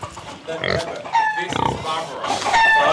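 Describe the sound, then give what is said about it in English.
Pigs snort and grunt in a steady run of short, rough bursts, with a few higher squealing calls mixed in, fairly loud throughout. They are two pet pigs, Berber and Barbara, kept at Kibbutz Misra and fed by kibbutz members and visitors. “Though Misra no longer raises or sells pigs, it does keep a small, snorting reminder of its porcine past.”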